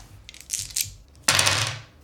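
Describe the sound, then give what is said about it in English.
Five dice rattle and clatter, a few small clicks first, then a burst of dice tumbling across a hard surface that slowly settles, rolled for damage. No talking. “Wait, you just rolled 5 dice worth of damage?”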